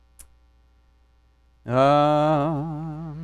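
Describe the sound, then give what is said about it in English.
A faint, steady low electrical hum sits under the microphone on its own, then a loud, wavering buzzy tone swells in halfway through and continues to the end. “Am I down on batteries or picking up interference?”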